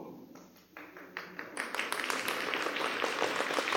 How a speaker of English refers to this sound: That's a slow clap. Working our way into it. But I appreciate it. I don't think the people really are buying what he's laying down, or at least I hope that's indicative of the slow clap.